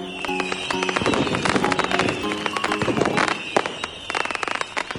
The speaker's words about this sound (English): Well, you're hearing a little bit of the fireworks in the background there, and hopefully everyone had a wonderful New Year. It was an incredible amount of fireworks in my neighborhood